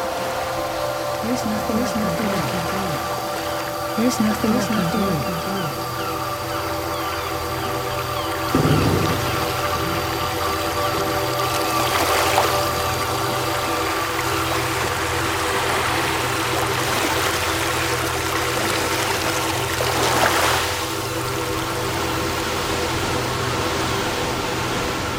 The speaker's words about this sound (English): But only more rain arrives, and then the floods.